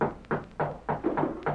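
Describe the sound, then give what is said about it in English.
Knocking at the door of a home at night: about six firm, evenly spaced raps, each a dull thud that fades quickly, with no voices. “But that night, as he sat alone in his home, someone knocked at the door and...”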